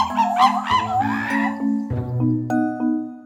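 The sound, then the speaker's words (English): Monkeys calling in a burst of swooping, rising-and-falling hoots that fade after the first second or so, with steady low musical tones shifting pitch underneath throughout. “Here's what monkeys sound like in real life.”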